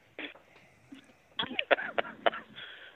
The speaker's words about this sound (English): I was trying to cough, and I couldn't cough and talk at the same time, and I tried to get my sentence finished, and I couldn't do it.